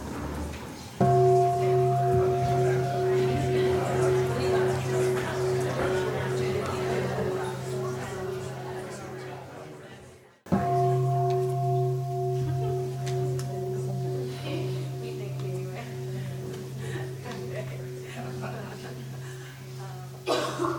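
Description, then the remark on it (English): A meditation bell is struck twice, about ten seconds apart, each strike ringing out with a steady, shimmering hum that slowly fades. The tone is fairly loud, with faint background noise underneath. “Okay, and then I'll ring the bell, and then the person with the longer hair will become the questioner.”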